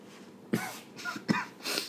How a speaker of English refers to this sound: Oh, you're coughing.